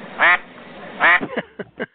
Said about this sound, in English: We haven't had any quacks today.